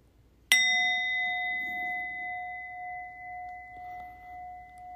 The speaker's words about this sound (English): And I'm going to ring my bell here.